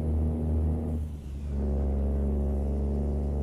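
A truck engine in a video game drones loudly and steadily, briefly dropping off for a moment as the truck shifts gears, then roaring back up to a sustained rumbling rev. No one speaks.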